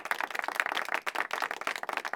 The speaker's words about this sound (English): Give a clapping reaction